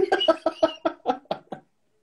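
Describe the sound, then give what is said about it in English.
A lone wild turkey walking down a street gobbles outdoors, a quick rattling run of about eight throaty notes that speed up slightly and fade, clear, followed by silence. “Wow, there's a wild turkey walking down the street.”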